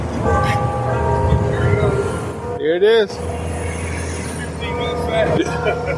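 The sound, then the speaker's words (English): Chimes of the restored Keeney Memorial Clock Tower, a 130-foot historic tower in the north end of Hartford, ring on its unveiling day with long, sustained bell tones over a steady rumble of passing traffic, and a person briefly speaks in the middle. “Before these students completed their work this April, the clock in the historic tower in the north end of Hartford had been stopped and its chimes silent for 4 years.”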